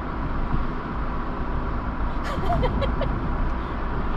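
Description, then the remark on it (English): Steady, loud roaring wind buffets the inside of an old car driving with the windows down, a constant low rumble throughout, with a faint voice briefly surfacing midway. “Sorry about all the wind noise and stuff. It's my air conditioning.”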